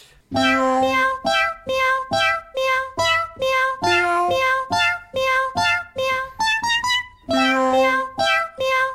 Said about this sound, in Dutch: Miauw. Miauw.